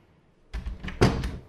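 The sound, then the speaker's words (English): A heavy lab door is pushed shut and locked: a scraping, rumbling swing that ends in a solid thud about halfway through, followed by a brief rattle of the latch. No one speaks. “Okay, and the big door, that's closed. And we have to lock this now just to make sure that the samples don't get interfered with.”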